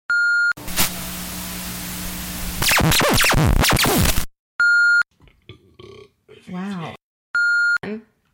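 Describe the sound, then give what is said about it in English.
Three short, steady electronic beeps, each about half a second long, separate audio files to mark where each starts and ends: a loud burst of hissy noise, then strange vocal noises and brief voice sounds. “So I'm going to separate all the files with a little beep so that you know where they start and end, and they are really freaking weird.”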